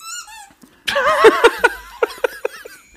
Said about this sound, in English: I found a squeaky toy on the ground.